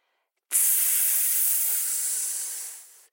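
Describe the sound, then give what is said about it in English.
A snake's hiss: one long, steady, breathy sound that starts abruptly, holds bright and sharp for about two and a half seconds, then fades. There is no talking. “"Why are you crying, Hare?" she hissed.”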